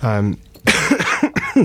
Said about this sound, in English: First cough of the show there.